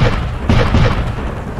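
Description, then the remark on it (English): Three heavy cannon shots boom in quick succession from the cannons below deck of a ship, loud, their deep blasts running together into a dense rumble with no voices. “3 shots fire out as the cannons below deck.”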